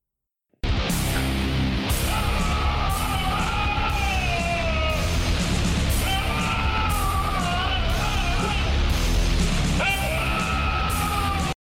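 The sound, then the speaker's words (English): A dog lets out loud, drawn-out screams that sound eerily human, wavering in pitch and repeating almost without pause for about ten seconds, harsh with no talking. “That is an animal, but it is a dog.”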